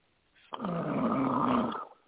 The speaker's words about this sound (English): Are you falling asleep there? Yeah, that was me. Yeah, it sounded like a snoring. Don't be doing that.